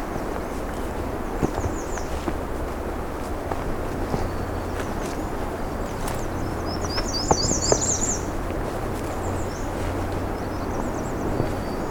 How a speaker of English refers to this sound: I have a myrtle warbler up ahead. Let's see if we can get to that.